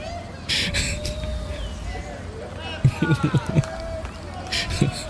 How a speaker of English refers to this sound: The construction workers are cheering them on. That does not surprise me, though. That's typical NYC shit right there.